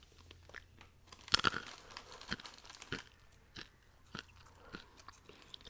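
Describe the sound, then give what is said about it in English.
Quiet crunching and chewing of a dry snack, a string of crisp irregular bites, with a brief burst of bag crinkling near the start. No one speaks. “there's just little tiny blips every time I crunch.”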